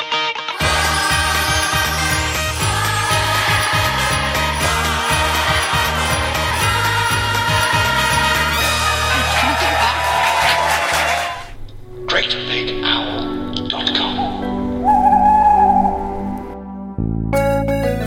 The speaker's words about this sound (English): as you might have guessed from the music that's playing underneath, which is a sort of lo-fi rendition of the Friends theme tune